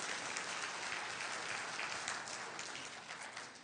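A crowd applauds steadily, a dense wash of many hands clapping at even loudness for several seconds before easing off slightly at the end. No one speaks over it.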